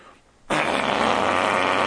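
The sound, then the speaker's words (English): After a brief quiet moment, a loud, buzzy fart noise bursts in abruptly and holds steady, raspy and sputtering, for well over a second, alone with no talking. “I used to do that in school. Farting.”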